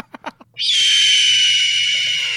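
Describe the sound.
A voice imitates an eagle's cry: a few short vocal sounds, then one long, loud, piercing screech that holds steady for nearly two seconds, shrill.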